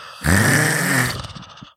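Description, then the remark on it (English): One loud, forceful nose blow into a tissue: a wet, honking burst with a low buzzing tone, sustained for about a second and then trailing off into softer sniffly puffs. “I got to blow my nose. Can you give me a tissue?”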